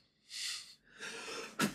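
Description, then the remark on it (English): A sneeze: a sharp hissing intake of breath, then a longer rushing breath, ending in a sudden loud explosive burst. No one talks. “Sneeze. Damn it.”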